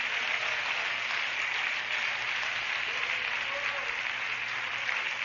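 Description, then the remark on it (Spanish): A crowd claps steadily for several seconds as an offering of applause to the Lord Jesus Christ, a dense, sustained wash of applause, with faint voices murmuring underneath. “Denle una ofrenda de aplausos al Señor Jesucristo.”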